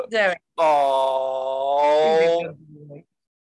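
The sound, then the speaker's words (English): A dog named Major whines with a brief opening cry, then a long, steady, moaning whine of about two seconds that drops off into a lower, quieter groan. No one speaks. “is that your dog in the background?”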